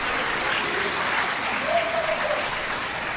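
A crowd applauds steadily, a dense wash of many hands clapping at once with no breaks. The clapping stays loud and even throughout, with no voices standing out.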